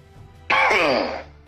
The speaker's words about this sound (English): Sorry, getting out of my emphysema cough.